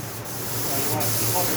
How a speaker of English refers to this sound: All right, so, and if you hit that spray gun just there, you can see any excess spray.